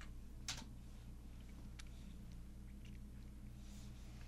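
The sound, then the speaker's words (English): A few sparse, quiet clicks of typing on a computer keyboard to call up a stock chart, irregularly spaced over a steady low hum, with one sharper keystroke near the start and no voices. “Well, I'll tell you, either the keyboard or me is dysfunctional today.”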